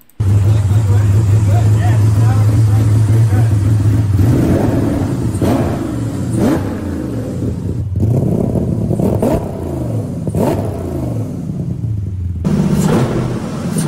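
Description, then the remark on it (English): A V10 car engine with reworked heads, twin throttle bodies and drive-by-wire revs loudly, climbing and dropping in several sharp bursts after a steady low idle, with a crisp, throaty tone throughout. “I want to hear them rev it. They revved it and it sounds super crisp.”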